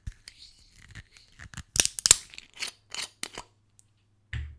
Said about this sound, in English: All right, let's open the bottle. It's got a metal screw cap, so here we go.